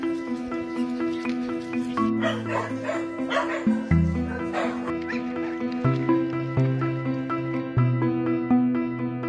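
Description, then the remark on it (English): Two abandoned puppies by the sea yip and whimper, a steady run of high-pitched cries and short barks that carries on through the whole stretch, with a busier, noisier burst partway through. “She said that they have abandoned two puppies next to the sea.”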